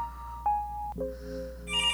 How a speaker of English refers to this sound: Oh my God, oh my God, the phone is ringing. It's only 3:25, she's calling early and I'm not ready.